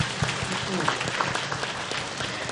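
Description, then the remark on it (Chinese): A crowd applauds steadily, a dense wash of many hands clapping at a fairly loud, even level with a few sharper claps popping out of the texture. “谢谢师父的 祝福，大家是不是以热烈掌声？”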